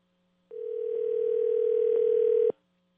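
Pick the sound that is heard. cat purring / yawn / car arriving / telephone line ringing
telephone line ringing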